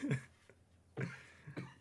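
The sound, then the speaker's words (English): A sneeze breaks out in a few sharp, breathy bursts, the first and loudest at the start, then two more after short pauses, with no talking around them. “Gesundheit.”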